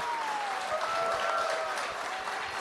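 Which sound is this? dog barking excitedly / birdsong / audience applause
audience applause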